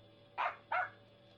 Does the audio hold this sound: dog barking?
yes